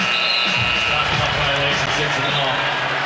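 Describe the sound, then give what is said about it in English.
A dense, steady roar of Knicks fans cheering in an arena at a basketball game as the shot clock is dribbled out, loud and continuous, with bursts of voices and faint ball bounces mixed into the broad wash of noise. “So the Knicks fans cheering.”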